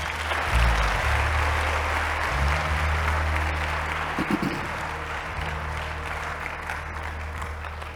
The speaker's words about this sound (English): Oh, let me lay my hands on you. Move. Oh. Oh, Jesus. Ah! Clap your hands.